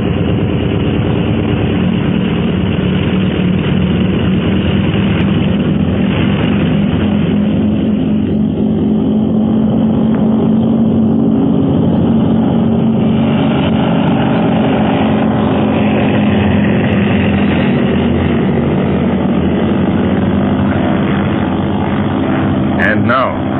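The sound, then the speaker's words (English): A propeller aircraft engine roars loudly and continuously as it takes off, a dense, steady drone with a low throbbing hum that shifts slightly in pitch over about twenty seconds. “Fasten your safety belt, Quan Wu. I'm about to take off.”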